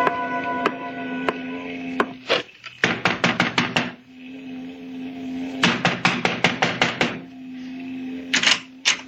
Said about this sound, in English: You knock too loud